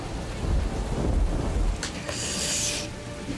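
A deep, rolling rumble of thunder swells and fades over steady rain, followed by a brief hissing rush of wind-driven rain. No one speaks.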